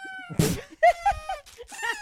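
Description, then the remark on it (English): A party blower noisemaker, in a recording found on YouTube, squeals through a series of reedy, buzzy honks whose pitch wobbles and slides, almost like yowling cats, opening with a rough, breathy burst. “Okay, but yet I'm annoying for finding it on YouTube because I didn't pull it out of the fucking drawer and start blowing it around.”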